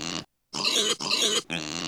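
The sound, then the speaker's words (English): A mini pig wearing a Lego outfit with a crown grunts loudly while being lifted, in four quick, throaty bursts, the last three nearly back to back after a brief pause, with no talking. “And this is what my mini pig's going to wear this week.”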